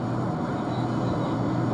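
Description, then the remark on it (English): An airplane drones steadily overhead, a continuous low engine rumble with a broad whooshing hiss, loud and unchanging throughout, with no voices present. “So, I bought a plane ticket to the Bahamas.”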